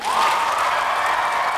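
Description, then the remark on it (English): An audience breaks into steady, dense applause for a poet after a poem, loud and continuous throughout, with a faint whoop or cheer rising at the start amid the clapping. “Applaud the poet.”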